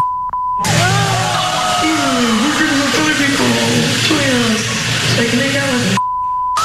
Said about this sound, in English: And so my wife was watching and she just told me about this the other day and they bleeped it out and then they put words underneath there or letters because they didn't want to put the words up either.